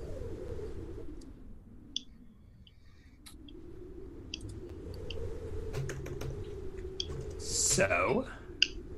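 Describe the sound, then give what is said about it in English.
Faint, irregular keyboard typing as a game master clears up notes: scattered soft clicks tapping away over a low, steady background murmur, with a brief rustle near the end. “I hear the DM typing.”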